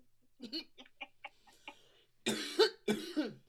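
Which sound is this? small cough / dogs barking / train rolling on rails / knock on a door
small cough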